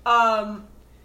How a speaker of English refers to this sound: Bless you. Stop it. Bless you. Bless you.